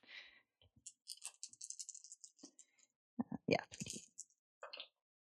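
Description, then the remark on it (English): A quick flurry of small hard clicks and rattles, like dice tumbling across a tabletop, fairly faint, with a few voice-like sounds mixed in toward the end. “Don't use my dice. No, I'm don't want rolling yours, terrible today.”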